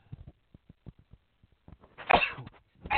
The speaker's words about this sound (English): I'm so sorry, everybody. I'm sorry for everyone listening that you heard me sneeze, but, you know, you can't help it. I couldn't mute it fast enough.